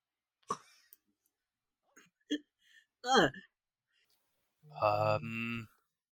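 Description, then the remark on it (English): A single sharp sneeze, seemingly voiced by a person as an imitation, bursts out loud after a few small vocal noises, followed by a drawn-out voiced sound. “Bless you?”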